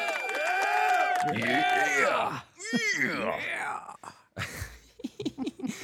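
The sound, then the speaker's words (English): An eerie crowd laughter sound effect swells in overlapping, wavering voices that slide up and down in pitch, loud and dense at first, then breaking into choppier, moaning bursts toward the end. “I wonder if I could find better laughter. So it's not this or applause and stuff like that.”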